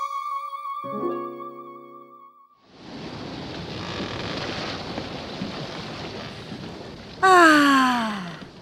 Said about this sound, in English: Ah, so nice to be sailing on the open sea without having to worry about those bloody stupid bats.